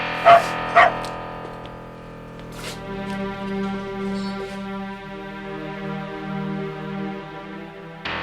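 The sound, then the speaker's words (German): A dog held on a woman's arm on a film set barks twice in quick succession after a departing cleaning woman, sharp, right at the start; afterward a steady, sustained musical drone carries on quietly with no further barking. “auf Gabis Arm, bellte ihr nach”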